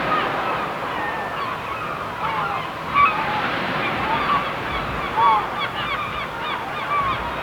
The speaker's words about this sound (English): Let me turn the music down and listen to those waves on the shore. Gotta watch out for those pesky seagulls. So you know those pesky seagulls, yeah? You know all about those. Watch your chips and your ice creams.